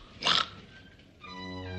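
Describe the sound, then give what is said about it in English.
A man in a movie scene lets out one short, harsh snort imitating a pig, a loud noisy burst lasting a fraction of a second, followed by a quieter steady tonal hum. “And then he snorts.”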